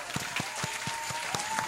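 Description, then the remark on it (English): Steady, evenly spaced hand claps, about seven in under two seconds, each a sharp, fairly loud smack over a low background hiss, with no voices. “Applause. Yay. I have salt in my hand. I can't applaud.”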